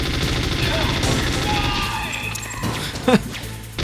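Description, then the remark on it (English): Loud, rapid video game gunfire rattles in a dense, continuous stream of sharp shots, thinning out toward the end, where a brief rising-and-falling tone cuts through. “So come bullets, okay.”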